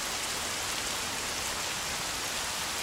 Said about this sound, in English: the rain, when it rains here in the rainforest, it just starts in full force all the time, full force. Not like at home. At home, the rain moves in, starting with a drizzle and gradually grows into a downpour. Here, it's like whoosh, downpour.